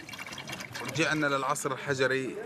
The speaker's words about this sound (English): In some places, they're tapping water from underground pipes.